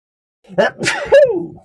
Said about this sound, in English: Hold on. Okay. I'm going to sneeze.